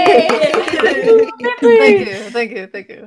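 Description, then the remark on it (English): A small group claps and cheers, scattered handclaps mixing with several voices letting out loud, rising, excited shouts that come in short bursts. “We can clap better.”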